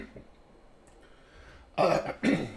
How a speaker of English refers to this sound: clear my throat, sorry.